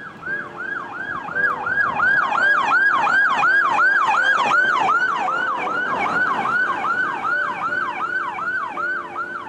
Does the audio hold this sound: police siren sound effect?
yes